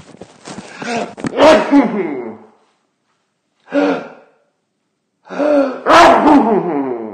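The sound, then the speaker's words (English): A person gasps and catches their breath in a few drawn-out bursts, then lets out a loud sneeze with a sharp burst at the end. No one speaks. “I'm going to sneeze.”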